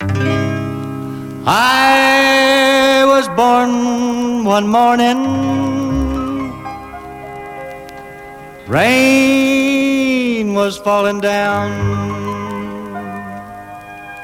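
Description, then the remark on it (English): A recorded cover version of a song plays loud: a solo voice sings long, sustained melodic phrases over steady instrumental backing, with two big swells as each line begins. “when you learn a song from some artist once and that's the one you love, then any other version just come on”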